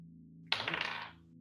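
Dice rolled during a tabletop role-playing game clatter and roll across a hard table in a quick, rattling burst lasting about half a second, fairly loud, then settle into quiet.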